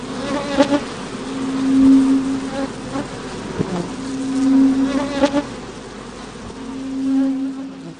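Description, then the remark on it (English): A loud swarm of bees buzzes steadily in a room, the reverberating droning hum swelling and fading in three waves, with sharper clicks and flutters scattered through it. “The buzzing grew louder, filling the room with a reverberating hum.”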